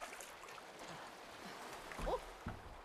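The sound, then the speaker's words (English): Water sloshing and lapping around a small rowboat as it rocks, with soft creaks and a brief louder knock of movement near the end, moderately quiet. “Be careful. It's rocking.”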